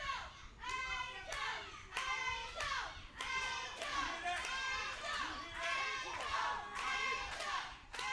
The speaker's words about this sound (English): The crowd chanting Angel. You know what? I think we know who the fan favorites to win are.